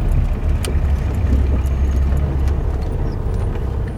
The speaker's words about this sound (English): He's working to train as a lawyer, but drives a Soviet-era blue and white Lada, a staple of the taxi business here, around Addis.